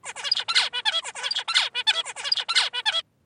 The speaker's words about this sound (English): So this golden tutor that we're going to listen is the song that all of the birds heard.